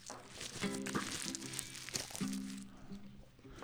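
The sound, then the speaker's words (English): A piece of paper with the word "drink" written on it is crumpled by hand, a dense run of irregular crinkles and crackles lasting several seconds, with a faint low hum underneath. “You just crumpled up a piece of paper that said "drink" on it.”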